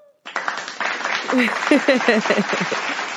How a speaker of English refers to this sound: Let me give her an applause, y'all.